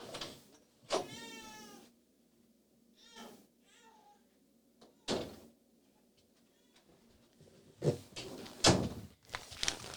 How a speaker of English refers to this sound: I have a couple of doors closed, but my baby is crying. You may still be able to hear that, but that's how it goes. Let me see if I can close that door.